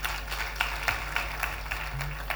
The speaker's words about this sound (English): Clap your hands for Auntie.